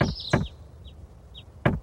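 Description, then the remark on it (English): Three sharp knocks on a door, two close together and a third after a pause, with brief high bird chirps in between against a quiet background. “Yeah, somebody knocks and there's bird noises.”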